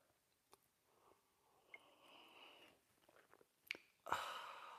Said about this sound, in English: And join me now for the unparalleled pleasure, the dopamine hit of the day, the thing that makes everything better, except maybe your vaccination. It's called the simultaneous sip. It's famous all over the world, and you're about to enjoy it. Go!